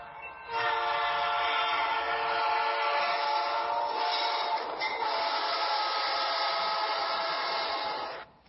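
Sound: approaching train with horn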